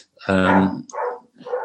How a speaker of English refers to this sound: That's my wife has just come back. She's been to her mother's down in Hereford, and the dogs have gone crackers because they've seen the car coming in. I'm sorry about that. They'll shut up in a minute.